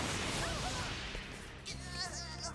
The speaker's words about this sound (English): The explosion destroyed the teleportation unit. Can you fix it? I'll try.